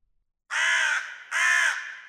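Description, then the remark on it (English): Two loud, harsh crow caws in quick succession, each about half a second long, with a short pause between them and no other sounds around. “Tonight, I rest with my fellow crows, free from the fear and anxiety that plagued the last 183 days.”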